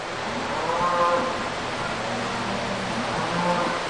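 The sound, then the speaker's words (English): Cattle low a few times in a cattle barn at the state fairgrounds on a rainy day, their drawn-out moos half-buried in a steady wash of crowd and barn noise, with no one speaking clearly. “So we are in the cattle barn”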